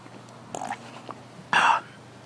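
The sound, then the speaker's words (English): A sip of water: a short, soft slurp followed about a second later by a louder, throaty gulp, with no talking. “And let me just take a sip of water here.”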